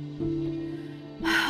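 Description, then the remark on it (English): A dog whines in a steady, drawn-out tone for about a second, then breaks into a breathy, huffing pant, fairly loud with no talking, on the backseat of a car. “The panting, whining of ketchup in the backseat mirrored her own pent-up anxiety.”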